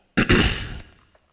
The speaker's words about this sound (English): Sorry about my cough. I was actually cleaning today. I was being productive. And I mixed, I didn't mix anything that I thought was potentially toxic, but maybe we have a bottle of bleach that's quite old. And I poured it into the bath